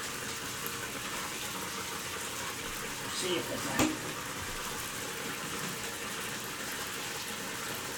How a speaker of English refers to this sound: We're flooding the bath right now to see if Chappie's natural habitat has been relented from all the hair and the dirt and everything else here. And it's flowing much more freely right back into the pipe.